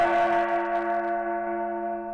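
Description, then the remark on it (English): A gong is struck and rings out with a sustained, shimmering tone, a bright sizzling wash riding over the steady hum before the high shimmer slowly fades while the deep tone lingers. “So you can hear that tone, but you can also hear kind of a sizzle on top of it.”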